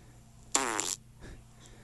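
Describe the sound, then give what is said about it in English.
A single loud, buzzy recorded fart, sent in by a listener and played on air, bursts out for about half a second, with a faint rumbling trail afterward against a quiet background. No one speaks. “What Up Pete requested to have his farts played on the air.”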